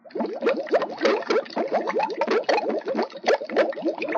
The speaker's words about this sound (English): The cast iron cauldron is hanging from a chain in the middle of the room. It is dangling above hot smoking coals. Inside the cauldron is a dark liquid, hot and bubbling.